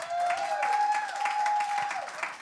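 Steady, dense applause from an audience, many hands clapping together at an even loudness, with a sustained high whistle-like tone ringing over the clapping for most of its length.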